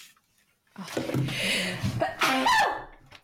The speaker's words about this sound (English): I've got an explosive sneeze lined up. Excuse me.